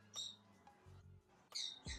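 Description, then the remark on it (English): Several sharp, high chirps from birds in a walk-in aviary, one near the start and a quick pair near the end, with soft low rustling and handling noise in between as a person goes into the aviary. “I'll actually go into the aviary and I'll show you.”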